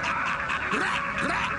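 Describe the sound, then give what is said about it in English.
A dog barks twice in short, yelping bursts, set against a dense, constant wash of background noise, with no one speaking. “Yo, God, bark on these motherfuckers.”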